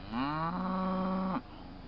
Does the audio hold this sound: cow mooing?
yes